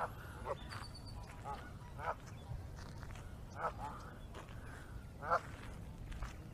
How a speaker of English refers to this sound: Look at all the little chickadees. Or I guess maybe they're baby geese, because they're walking with these geese.